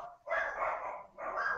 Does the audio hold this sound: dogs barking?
yes